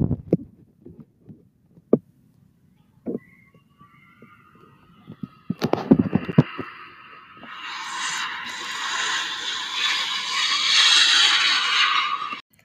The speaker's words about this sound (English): This is your pilot speaking. We are at New York right now, and we are headed to LAX. Enjoy the flight. Please fasten your seatbelts. Finally, I'm taking off. I think I hear the engine.